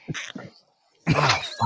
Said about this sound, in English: Oh, fuck. Fucking sneezing. Excuse me.